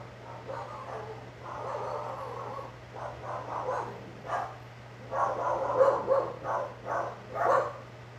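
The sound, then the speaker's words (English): Several dogs bark and yip repeatedly outdoors, a busy, overlapping chorus of barks with brief pauses, over a steady low electrical hum. “I have dogs going berserk outside.”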